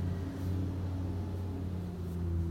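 A bus engine rumbles steadily and loudly, a deep droning hum with a constant pitch that holds for the whole stretch, with no voices.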